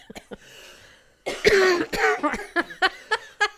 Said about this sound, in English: Oh my God. I have a cough that will not go away. I'm going to go to urgent care.